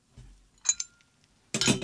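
A glass straw clinks against a drinking glass: two quick, bright taps close together, then a louder, longer rattling clink at the end, with no talking.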